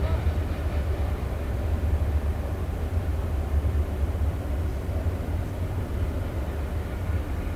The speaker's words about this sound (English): I think I hear the first train of the game. The old 720 is rolling through.